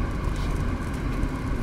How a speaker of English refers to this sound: Now we get a little bit of rain.